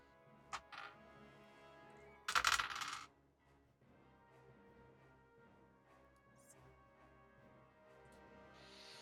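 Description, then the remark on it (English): Dice roll and clatter across a hard surface in a short, loud burst of about a second, preceded by a single sharp click, then a low, steady hum remains. “I love the sound of dice rolls in the morning.”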